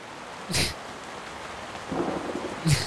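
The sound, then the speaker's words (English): A thunderstorm sound effect: steady rain hisses throughout while thunder cracks and rumbles in two or three bursts, one sharp, the others deeper rolling booms. No voices. “I see a storm brewing in. Let's talk about this. Look, we got effects now.”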